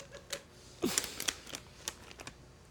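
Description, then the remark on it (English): A crunchy snack is bitten and chewed, giving a quiet run of sharp, crisp crackles in an irregular rhythm, with a louder burst of crunching partway through and no talking. “Take a bite of one. Take another one. I want to hear it in the microphone.”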